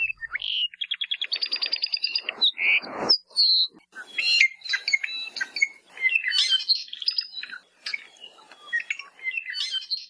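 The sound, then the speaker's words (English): An apapane, a crimson Hawaiian honeycreeper, sings a busy, varied song: a quick run of repeated buzzy notes, then whistles, harsh rasps and tumbling trills filling the whole stretch with no talking. “We now go to University of Hawaii Hilo professor Patrick Hart, who introduces us to a crimson honeycreeper in this week's Manu Minute.”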